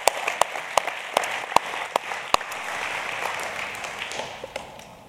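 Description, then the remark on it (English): An audience applauds steadily for about five seconds in honor of the leadership team, a dense wash of clapping punctuated by a few sharp claps early on, tapering off slightly near the end. “But you guys have great leadership, and I just want to applaud that. Let's give honor to your leadership team.”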